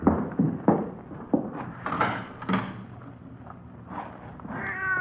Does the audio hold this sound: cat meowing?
yes